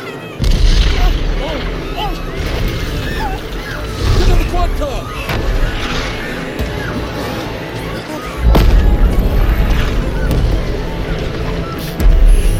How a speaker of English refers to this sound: Some kind of meteor. Look at this. There's more coming.